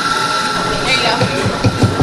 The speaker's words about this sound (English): This might sound like any Saxby's where you get your morning latte.